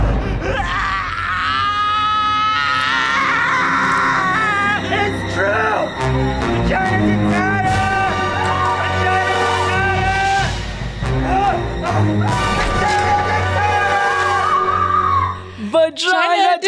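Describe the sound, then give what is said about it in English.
In a film scene, a doctor lying on the floor screams and groans in anguish while staring at the stump where his fingers are missing, loud and sustained for most of the stretch, with strained cries rising and falling over a dense, rumbling background of dramatic sound. “While the doctor lays on the floor staring at his stump of finger where his missing fingers are. Screaming.”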